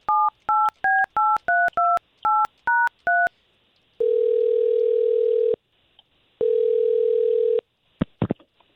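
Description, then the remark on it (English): Morning radio hosts of K92.3 dial a woman's telephone number: about ten quick touch-tone beeps, each a bright two-note chirp, followed by two long, steady ringing tones and a sharp click as the line connects. “We'll try to call her first.”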